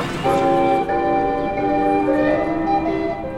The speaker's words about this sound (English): You'd hear the balls bouncing off the thumper bumpers and the bells ringing, fun for all.